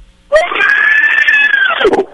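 A single long, high-pitched wailing yell from a neighbor, heard in the distance, that holds steady for about a second and a half before sliding down and trailing off, heard on its own without any talking.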